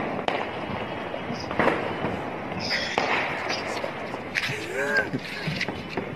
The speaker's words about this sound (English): All right, here's a bottle rocket from the balcony. Let's listen to this.